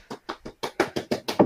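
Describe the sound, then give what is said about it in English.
Knuckles rap on a table about eight times in a quick, even rhythm, the dull thumps starting softer and growing louder toward the end, with no voices. “See, the first part, right, I was actually knocking on the table.”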